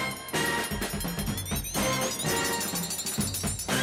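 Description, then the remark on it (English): A short, loud burst of brand-new intro music for a show's mailbag segment plays on its own, with bright sustained tones and steady percussive hits driving a busy, continuous rhythm for a few seconds. “That is brand great new mailbag segment music. With brand new music.”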